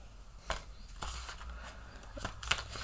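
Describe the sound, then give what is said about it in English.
A deck of tarot cards being shuffled: a handful of quick papery flicks and soft slaps at irregular intervals over a quiet background, with no one speaking. “So I am shuffling.”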